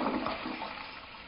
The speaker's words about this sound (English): Were there bowling balls at the end of that sound effect? If it's flushing to the toilet, it shouldn't have bowling balls in it.